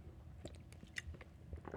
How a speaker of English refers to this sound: And we would, excuse me a moment, I have a sip of water here.